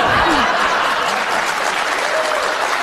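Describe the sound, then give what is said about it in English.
A studio audience bursts into loud, sustained applause mixed with laughter and cheering, a dense wash of clapping that fills the whole stretch without letting up. “Yeah, this crowd is like at a late night show. Basically, they're having a great time, and yes.”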